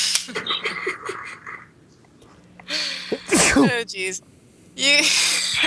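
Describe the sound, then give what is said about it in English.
A loud sneeze bursts out mid-conversation, a sharp single explosion with a quick breathy intake, while voices talk before and after it. “Sorry. Gesundheit.”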